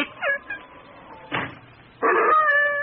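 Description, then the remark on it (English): An old hound dog whines in a few short, high-pitched bursts, then lets out a louder, drawn-out whimper at the end, with no one speaking. “Enough of that. Now lie down. Chicken-hearted old hound.”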